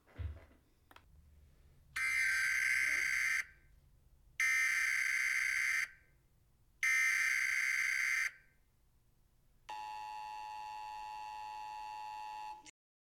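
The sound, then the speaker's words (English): An emergency broadcast alert tone, played as a test of the Domino's emergency broadcast system: three loud, harsh, buzzing bursts separated by short gaps, then a long, steady, piercing two-tone wail lasting about three seconds over a faint low hum. “This was a message from your Domino's emergency broadcast system.”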